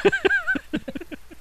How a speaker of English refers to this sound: What about orca? Well, we know what orcas sound like. We've all seen Shamu, right? The call of an orca.